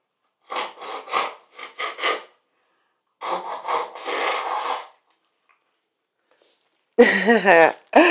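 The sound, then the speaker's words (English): Noisy nose blowing into a tissue: a quick series of four short bursts, then a longer, rougher blow, followed by a person beginning to speak. “Let me blow my nose.”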